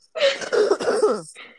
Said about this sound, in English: Hold on. Yeah, I got a cough.